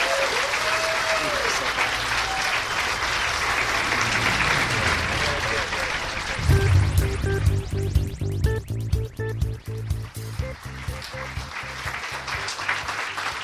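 A large audience applauds steadily, a dense, sustained wash of clapping with some cheering, and partway through a band starts playing loudly over the ongoing applause.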